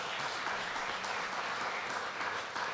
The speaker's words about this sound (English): I see someone clapping there who had an 8-0 birthday last Sunday.